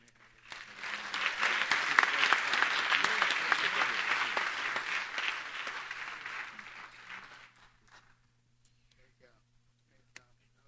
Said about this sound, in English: We applaud you. We're proud of you.